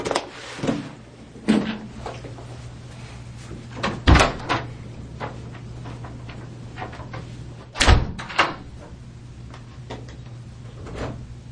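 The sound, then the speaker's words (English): A door slams shut hard, twice, with sharp loud bangs a few seconds apart, amid quieter knocks and shuffling and a steady low hum in the background. “She storms out, slams the door”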